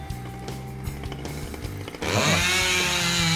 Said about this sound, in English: He's shaving his legs. Are you shaving your legs? Manscaping happening.